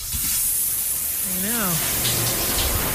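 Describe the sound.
Steady shower spray hisses continuously throughout, with a brief hummed or sung voice rising and falling partway through over the rushing water.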